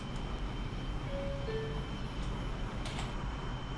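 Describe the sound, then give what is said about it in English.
A Brooklyn-bound subway train rumbles with a steady low roar throughout, a thin high whine running above it and a few faint, brief tonal beeps partway through. No voices. “This is a Brooklyn bound. There you go. Do you hear it?”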